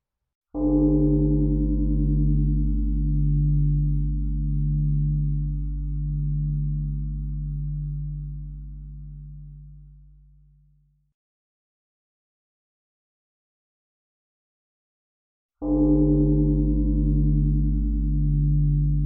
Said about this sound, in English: Before we begin, let's take a moment to listen to the sound of the bell 3 times. Just relax and enjoy the resonance of the bells.